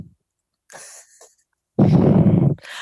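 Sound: breathing into the microphone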